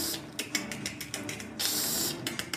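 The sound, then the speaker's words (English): A voice imitates the sound of an Ankheg, a monster, as it drives one of its front legs into the ground: a run of sharp, clicking hiss bursts in a rough rhythm, then a longer sustained hiss and a few final clicks, harsh and airy. “It begins a series of hissing and clicking noises as it drives one of its spine front legs into the ground.”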